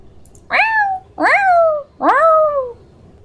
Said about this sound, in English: The cries of your beloved feline friend are heard amidst a thunderous, icy storm.